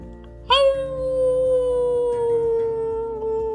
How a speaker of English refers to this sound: They got all the puppies to start howling and all the kitties to start meowing. Meow! And pretty soon, it was getting very loud.